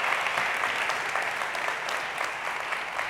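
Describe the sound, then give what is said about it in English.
A crowd claps steadily in a dense, even round of applause, a continuous wash of many overlapping hand claps holding at a fairly loud level throughout, with no voices standing out. The crowd is applauding to welcome a guest speaker. “So you guys give him a round of applause.”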